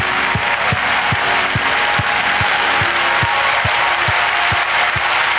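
An audience claps hands loudly and continuously, a dense wash of applause from many people, with a steady low thump pulsing underneath about twice a second.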